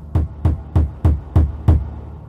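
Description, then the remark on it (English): Six heavy knocks beat against the outside wall of a log home in the evening, in a steady, even rhythm, each a deep booming thud with a short ring, loud and alone with no voices. “That evening, the family began hearing beating sounds on the outside walls of their log home.”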